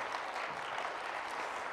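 An audience claps steadily, a dense, even wash of many hands applauding at a constant level for a couple of seconds, with no voices standing out.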